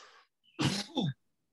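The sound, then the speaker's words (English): A loud, rough cough caused by allergies, in two quick bursts with a raspy, throaty edge, heard alone after a soft breathy sound, with no talking. “These allergies are like, I've never coughed from allergies before.”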